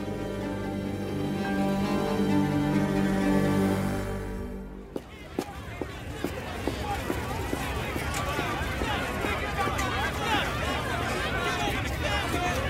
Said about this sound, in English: It's early. Too early to deal with this. That crowd of reporters is about the last thing I need.